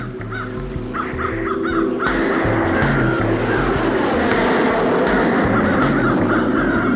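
Several crows caw in short, repeated bursts while eating a dead seagull on a runway, over a steady, loud rumbling roar like engine or aircraft noise, with the calls rising and falling across the scene.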